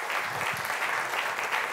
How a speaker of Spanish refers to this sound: Le vamos a dar un aplauso